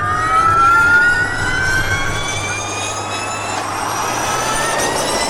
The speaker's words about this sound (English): Formula E are all-electric race cars with backers like British billionaire Richard Branson and actor Leonardo DiCaprio. They hope it will overtake their louder, polluting cousins.